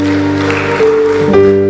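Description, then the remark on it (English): A church audience claps steadily in a dense, continuous patter for people coming forward to be born again, mixed with sustained keyboard or organ tones holding steady notes underneath. “Oh, keep clapping for them as they come.”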